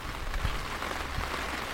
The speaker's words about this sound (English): As the rain starts to fall on the gazebo. I'm loving this gazebo setup because we are dry, we are outside, and if you can hear that.